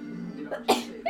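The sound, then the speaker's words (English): A woman sneezes once, quick, sharp and fairly loud, over a faint steady hum, with a brief breathy sound just before it and no talking. “Almost every podcast we do, her sneeze gets picked up somewhere.”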